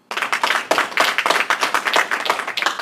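Applause from a group of hands clapping, a dense, crackling patter of claps that stays steady and fairly loud for about three seconds, with no voices.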